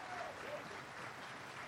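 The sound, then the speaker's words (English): Police officers applauding, a steady, dense wash of clapping that holds at an even level for the whole short stretch, with a faint murmur of voices mixed in. “There are the cops applauding that.”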